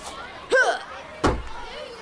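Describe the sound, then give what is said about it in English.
A thrown crabapple thumps against a wooden door twice on Halloween, sharp knocks about three quarters of a second apart, over a faint background hiss. “Throw a crab out at the door, Tom.”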